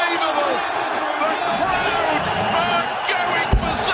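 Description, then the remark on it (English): A large crowd at a darts match roars and cheers continuously, a dense wash of many voices with scattered whoops rising above it and one sharp thump near the end. “That's the crowd. Yeah. So many people are there.”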